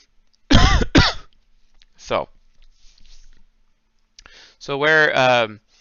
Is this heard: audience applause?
no